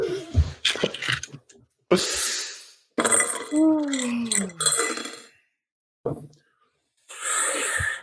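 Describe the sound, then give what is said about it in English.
Window glass shatters in several harsh, crackling bursts as a body is smashed out through the window and falls 40 stories, with shards clinking and raining down between them. A falling, wavering wail sweeps downward in the middle. Fairly loud. “Miles's body goes falling 40 stories out as glass shatters and rains down”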